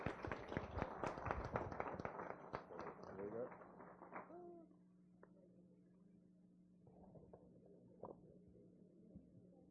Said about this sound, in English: Please give these people a warm round of applause.